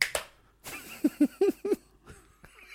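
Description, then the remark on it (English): A ceremonial hand clap: a sharp opening clap, a brief pause, then a quick, evenly spaced run of about four crisp claps, followed by a last softer one. No one speaks. “That's the ceremonial clap, which means it's time to disrobe.”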